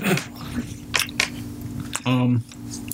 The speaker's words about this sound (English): I should probably chew this before I keep talking. That's a little bad idea. This is going to be dead air for a couple of seconds while I...